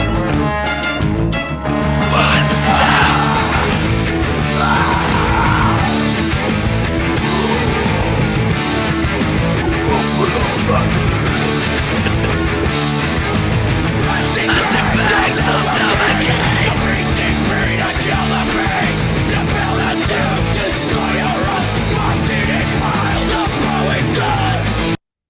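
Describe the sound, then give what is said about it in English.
A hardcore song builds up into its bridge with harsh screamed vocals over a dense wall of loud, distorted guitars and pounding drums, driving steadily without a break and without any talking. “doing the hardcore vocals on that song”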